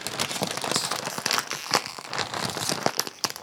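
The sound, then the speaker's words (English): A bag of Tim's Cascade Style extra thick and crunchy honey barbecue potato chips crinkles and rustles for a few seconds, a dense, bright crackling with irregular sharp pops scattered throughout, fairly loud and steady, with no talking. “All right, all we have now is the Tim's Cascade Style Potato Chips.”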